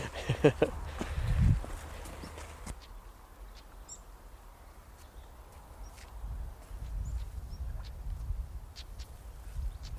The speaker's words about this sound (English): So it's just over here is a stone chat. Oh, yes. Is that making that chucking noise? It's funny enough, yeah. It's very distinct. Yeah, I mean, you couldn't get it wrong with any other bird on the heath.